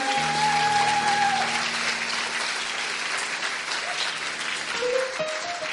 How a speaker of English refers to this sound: Thank you for coming. You may go back to your seats. Clap for them.